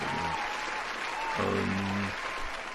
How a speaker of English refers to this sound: Hold up, I forgot the applause.